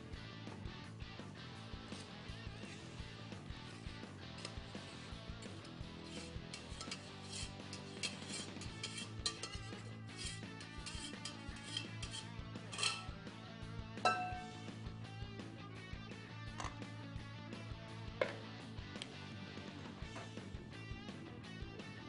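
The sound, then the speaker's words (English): Kitchenware clinks and scrapes as soup is ladled into a blender, with scattered metallic taps and a steady low hum underneath, no talking. “Then we're going to add it into our blender.”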